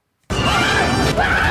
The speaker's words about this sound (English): I hear it loud and clear. When you put that scream from Solo back to back with that scream from The Last Jedi, it's the same scream.